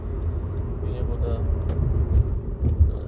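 A car drives through traffic on a Friday afternoon, with a steady low engine and road rumble filling the whole stretch and a few soft clicks and bumps rising briefly above the drone.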